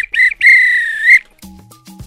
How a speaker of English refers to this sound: If this were a real bit of extra time, this is when the ref will blow the whistle because it's finished. That's it.